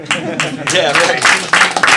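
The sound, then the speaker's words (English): A short burst of applause from a group, a dense, steady patter of clapping with voices cheering and talking over it, fairly loud throughout. “So thank you again, and let's give a big round of applause for the it's not Caribbean.”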